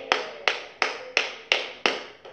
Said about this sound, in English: And you ought to clap your hands right there.